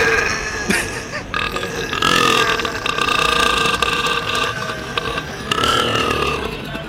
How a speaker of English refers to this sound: Hold the Guinness World Records title for the loudest burp at 109.9 decibels.